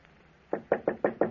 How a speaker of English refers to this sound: I was in my office when I heard a knock on the door.